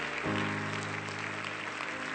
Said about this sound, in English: Can you clap your hands to Jesus one more time?